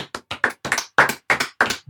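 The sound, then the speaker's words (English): Steady hand clapping from people outside at 8 o'clock, part of a nationwide round of applause for the NHS. About eight sharp claps in under two seconds at a quick, slightly uneven pace, fairly clear, with no voices over it. “There's a bunch of people cheering outside. I think it's like the NHS thing.”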